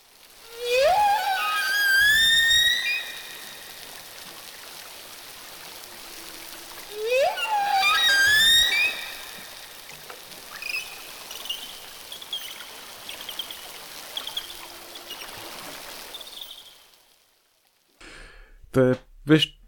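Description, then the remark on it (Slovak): Two loud, rising whale whistles with rich harmonics sweep upward one after another, followed by a series of shorter, fainter high-pitched whistles over a steady underwater hiss. “v tej vlastne verzii poslednej, v tej poslednej časti, tak vlastne už je tá úplne prerobená nová téma, kde sú dve písknutia a potom také kratšie pískanie.”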